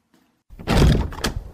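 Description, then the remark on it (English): A heavy wooden door, bolted and locked, is tried against its bolt, giving a loud thunk followed by a rattling shudder and a second sharp knock as it refuses to open. “Your door seems to be bolted. How strange, your door is locked.”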